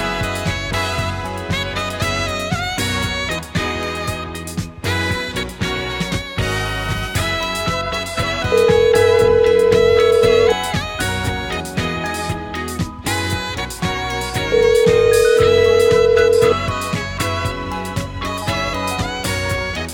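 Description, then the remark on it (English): Two long, steady ringback tones of an outgoing phone call sound a few seconds apart, each lasting about two seconds, layered over loud, busy background music that plays throughout with no talking; the call goes unanswered and is forwarded to voicemail. “we're going to see if Ryan Luce answers his phone”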